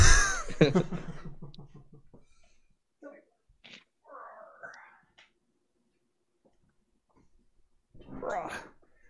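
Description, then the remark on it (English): A large male cat gives one loud, drawn-out meow, followed by a few soft rustles and small murmurs, then a short breathy snort near the end. “Don't meow at me like you want up and then snuff.”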